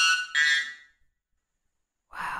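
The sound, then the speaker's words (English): A wattled bird's loud, ringing alarm call, played from a video on a laptop: two quick metallic notes that trail off with an echoing decay, a brief silence, then another harsh burst begins. “It just has like a hollow, echoey, like, yeah, it does. It's like reaching far.”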